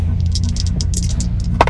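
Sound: dice rolling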